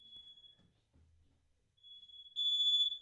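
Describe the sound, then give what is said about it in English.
A smoke alarm in a kitchen shrills with a steady, piercing high tone, fairly faint at first, then growing much louder and harsher over the last second, with no one talking. “now my wife has a smoke alarm going off in the kitchen.”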